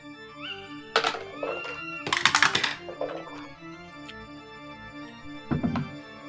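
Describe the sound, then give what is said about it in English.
Dice clatter down through a dice tower in a few quick bursts of hard clicking and thunking, with one busy rattling cascade in the middle. The dice are rolled for initiative in a tabletop role-playing game, giving an 8. Fairly loud, with no talking. “The dice tower didn't help me. I got an 8.”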